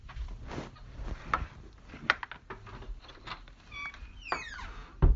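Scattered light knocks and rustling handling noises, then a sudden solid thump at the end as a door swings shut and bumps against a marker lying in its way at the door frame.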